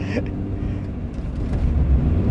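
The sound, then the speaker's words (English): A car engine strains with a low, heavy rumble, labouring as it tries to get rolling in fourth gear, growing slightly louder toward the end. “Hard to get rolling in fourth gear.”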